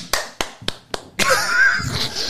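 hands clapping

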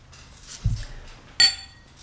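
glasses clinking

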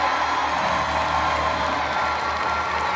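audience cheering and clapping

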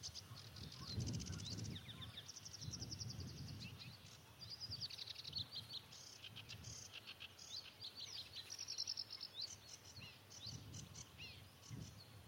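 sedge warbler song

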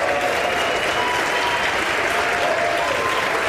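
applause

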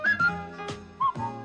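person whistling a tune

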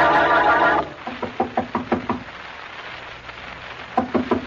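knocking on a door

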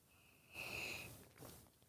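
sipping a drink

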